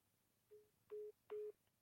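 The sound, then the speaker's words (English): Three short electronic telephone dialing tones beep in steady succession as a phone calls the UWA hotline, the first softer and the next two louder, played through a small phone speaker held up to be heard, with no one talking. “All right, I'll hold my phone up and see if this connects and see if anything happens.”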